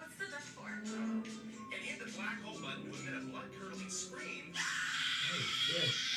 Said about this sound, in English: And hit the black hole button with a blood-curling scream.